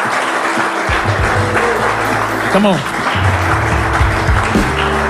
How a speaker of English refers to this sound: Give Him a mighty hand clap of praise. Come on.